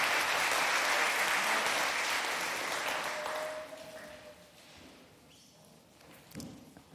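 A worship service audience claps together as praise to God in a dense, sustained burst of applause that gradually fades over several seconds, leaving quieter surroundings with a few scattered sounds at the end.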